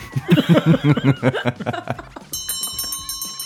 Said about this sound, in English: Oh, ladies and gentlemen, there's the closing bell.